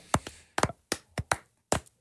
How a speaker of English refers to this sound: Now I'm the only one clapping. Yeah, I know.